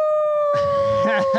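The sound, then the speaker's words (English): A person imitates a wolf howl with one long, steady, loud tone, while other voices break in partway through and continue over the held note. “Should I give him a howl? He's a wolf, right? I'm going to give you a howl.”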